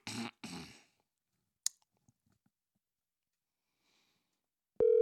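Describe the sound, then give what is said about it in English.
Mostly quiet, with a couple of soft rustling bursts and a sharp click, then a loud, steady electronic ringback tone of an outgoing phone call starts right at the end. “It's ringing.”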